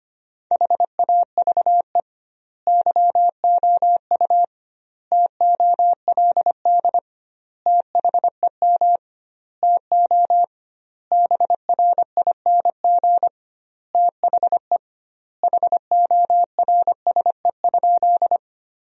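A steady mid-pitched beep keys on and off in Morse code at 25 words per minute, sending sentences from the top 500 words with doubled word spacing, grouped into words separated by longer pauses, with no voices present.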